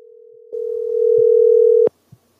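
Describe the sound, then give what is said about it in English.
An outgoing phone call's steady, droning ringing tone sounds on a single pitch, swelling louder partway through, then cuts off abruptly with a click as the line picks up, followed by a faint second click. “So let's give him a call right now.”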